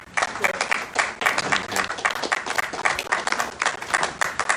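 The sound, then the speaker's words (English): A crowd applauds for God, many hands clapping in a dense, steady patter that holds at an even loudness throughout with no voices standing out. “I'm honored you're clapping.”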